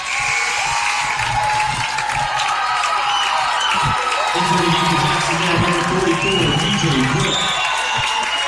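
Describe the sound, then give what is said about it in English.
A basketball crowd gives a loud, sustained ovation of cheering, applause and shouting as DJ Brooks checks in for Jacksonville late in the final period, with Jacksonville leading 63-34. The roar holds steady for the whole stretch, with indistinct voices mixed in. “DJ Brooks going to check in to the ovation from the crowd for Jacksonville.”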